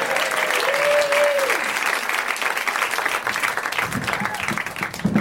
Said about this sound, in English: Let's have a big round of applause for the person who's not normally here running the show.